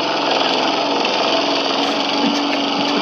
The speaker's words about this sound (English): Shall we lock that in with the lock-in lawnmower?